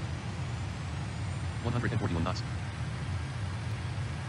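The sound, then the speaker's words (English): A steady, heavy roar of jet engines in reverse thrust during the landing rollout after an auto-flared touchdown fills the whole clip, deep and unbroken, while the text-to-speech voice of Talking Flight Monitor briefly calls out the speed in knots partway through. “Touchdown. Reverse thrust. Reverse thrust.”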